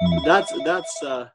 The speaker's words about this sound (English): Just let that phone ring.